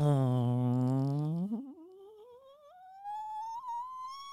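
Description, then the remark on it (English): A person, asked to make a fart noise for five seconds, imitates a long fart with their mouth: a low, buzzing lip tone holds for over a second, then slides steadily upward into a thin, rising squeal with no talking. “I want you to make a fart noise”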